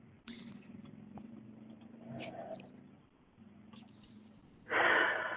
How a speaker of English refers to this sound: Yeah, someone is breathing hard.